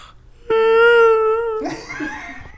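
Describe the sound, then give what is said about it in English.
A voice imitates the whine a man makes in his sleep in the middle of the night instead of snoring: one steady, high-pitched, nasal tone held for about a second, then breaking into a breathy, rough trailing sound. “He doesn't snore. Not really. He just like this whine.”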